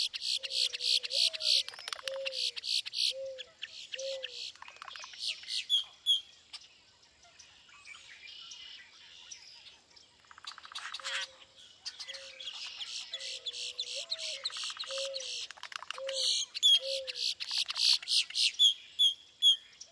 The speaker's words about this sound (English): Oh, and there's a common grackle just behind them. Listen for his harsh squeak.